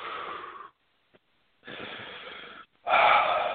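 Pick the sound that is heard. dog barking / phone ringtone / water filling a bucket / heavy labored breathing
heavy labored breathing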